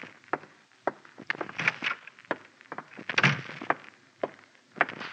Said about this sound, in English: What's this saluting and heel-clicking about? Oh, I thought you might be homesick for some military courtesy.